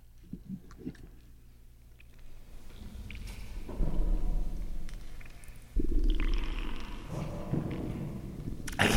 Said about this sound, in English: How do you get the big gulp sound?